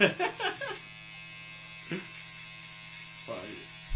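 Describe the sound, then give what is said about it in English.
An electric shaver hums with a steady mechanical buzz throughout as it shaves off a man's mustache, briefly overlaid by a few short bursts of voices at the start and twice more later on. “You can hear the electrical shaver like...”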